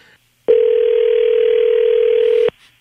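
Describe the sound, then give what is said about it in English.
A telephone dial tone hums loud and steady for about two seconds while calling someone back after a cut-off call, then cuts off abruptly, with no talking over it. “Should we try to call Phil back?”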